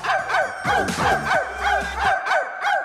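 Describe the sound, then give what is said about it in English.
Hillary Clinton imitates a dog barking, a quick series of about eight sharp, yappy barks in a steady rhythm, fairly loud and high-pitched, with no other talking. “they should play the Hillary Clinton dog bark. Give me another taste of that.”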